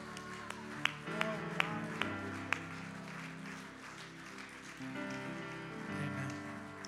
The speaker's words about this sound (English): Would you just clap your hands and praise to Jesus?